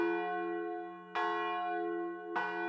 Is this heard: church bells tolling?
yes